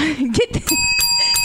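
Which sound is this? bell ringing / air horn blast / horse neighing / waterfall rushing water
bell ringing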